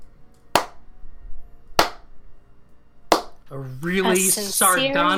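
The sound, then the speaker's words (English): Three slow, deliberate, sardonic hand claps ring out about a second and a quarter apart, crisp, before a voice starts speaking over the quiet that follows. “A really sardonic slow clap.”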